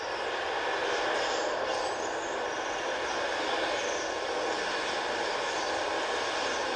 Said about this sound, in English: Sounds like the ocean, right? That's actually like from a New Wave video. You can download it just to soothe you looking at the birds.